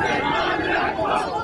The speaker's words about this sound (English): A crowd in Baghdad chanting, "America is the devil."